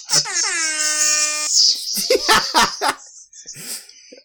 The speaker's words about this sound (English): Sorry, a rave right, just broke out. Is that an air horn? It's an air horn.